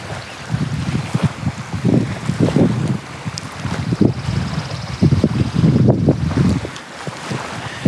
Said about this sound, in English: So today, as I stand by this rather choppy lakeshore, and as I look out, I do see maybe one or two fishing boats. I know that these waves are from the wind, the cold wind